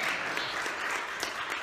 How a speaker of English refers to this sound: That's a good clapper. Yeah, go ahead, one more good clap on that.